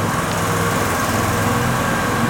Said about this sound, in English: we'll wait for that little car to pass